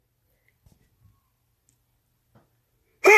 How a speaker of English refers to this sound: That sneeze came. I told y'all. Didn't I tell y'all about 2 hours ago that shit was coming? It's the wonders of having a big nose. Also, God bless me. And also, I'm sorry for sneezing in your ear like that